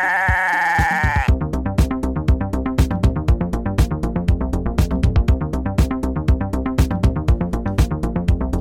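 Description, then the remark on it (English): A single loud, wavering goat bleat opens, then gives way to a steady, rhythmic run of punchy, evenly spaced beats with a tonal, music-like backing that continues to the end. “And I should also point out that in tonight's episode, there may be some questionable acts that involve a goat.”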